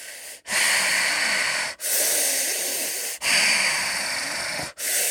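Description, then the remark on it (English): A voice imitates a man's loud, heavy, rasping breathing: four long, drawn-out breaths in a steady rhythm, each separated by a brief pause, hissy with no talking. “and God love him, but he was breathing so heavy, and it sounds so dramatic, but as soon as he walked in, like, the whole room was so quiet at this point, like, you could hear a pin drop.”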